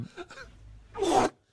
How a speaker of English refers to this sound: It's kind of like we're someone, someone put like reverb on a fart. Yeah. It sounds like there's someone put a large room or a cathedral filter over the fart. It's definitely ominous.